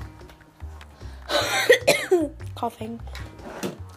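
A burst of close, harsh coughing, a couple of rough hacks in quick succession, followed by a throat being cleared, with faint room noise around it.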